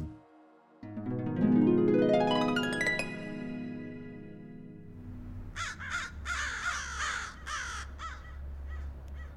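A low drone and rising harmonic swell give way to a chorus of crows cawing repeatedly, several harsh calls overlapping over a steady low rumble.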